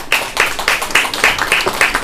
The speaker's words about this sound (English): All right, so let's all stand up. Again, energy. Let's start with some tapping, guys. So we're going to start clapping our hands.